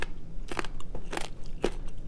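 Crunching on roasted pumpkin seeds: three sharp, crisp bite bursts spaced unevenly over about two seconds, with a low steady hum beneath and no talking.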